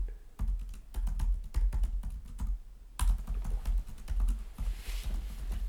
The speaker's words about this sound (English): Most entertaining part of the podcast is me typing on the computer, I hope.